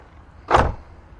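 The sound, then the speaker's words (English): A vehicle door slams shut on a caught seatbelt, giving one short, solid thud, with no one speaking and only quiet background before and after. “Whoops, got the seatbelt slammed in there.”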